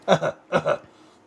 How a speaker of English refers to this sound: Well, clear my throat here.